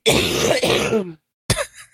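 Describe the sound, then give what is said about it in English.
A woman gives a loud throat clearing with a rough, rasping rumble lasting about a second, then after a brief pause a single sharp cough follows, trailing off quickly. “she needs a cough button over there.”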